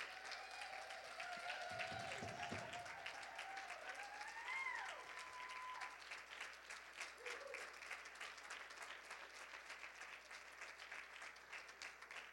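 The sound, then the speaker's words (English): A church audience applauds with steady, dense hand clapping that keeps going for about twelve seconds and thins slightly toward the end, honouring people given a Christmas gift card and a card from the church. A few brief vocal whoops rise over it early on. “We give them just a great big hand clap.”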